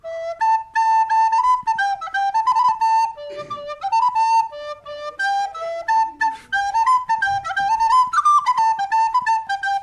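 A lively little tune played on a whistle, bright clear notes moving quickly up and down in a steady, dancing rhythm, fairly loud, with no one talking.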